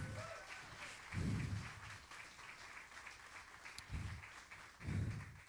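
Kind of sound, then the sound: crowd, audience applause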